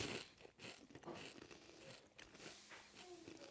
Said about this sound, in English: Man, those Frosted Mini Wheats, that's a tough chew.